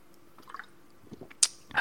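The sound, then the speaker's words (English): Faint wet, bubbly liquid sounds build to a sharp click, followed by a loud slurping sip of Walmart grapefruit sparkling water at the very end, with no talking. “Grapefruit bubbly Walmart sparkling water.”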